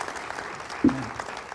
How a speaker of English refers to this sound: And our man of the year is John Fonta, but unfortunately he's not here today. But let's give him a round of applause.